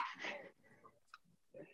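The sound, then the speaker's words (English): A dog, Jamie, chewing on its toys, heard as a few irregular, rustly gnawing bursts with short pauses between them and a brief squeaky chirp in the middle, fairly quiet overall. “Can you guys hear Jamie eating his fucking toys?”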